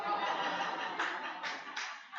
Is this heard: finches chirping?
no